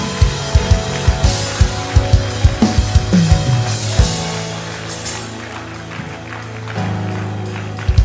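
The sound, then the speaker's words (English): An audience gives a clap offering, clapping together in a steady, even rhythm for a few seconds over sustained musical tones, then the clapping thins out while the held notes continue, with a few claps returning at the end. “Get a load of clap offering.”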